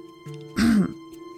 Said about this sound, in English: Well, his dad paused to clear his throat.